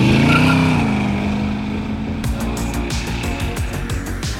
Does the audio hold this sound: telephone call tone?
no